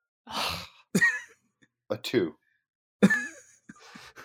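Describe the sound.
A sudden, explosive sneeze bursts out, with a few short breathy, voiced sounds and another sharp burst following, all fairly loud against otherwise quiet gaps.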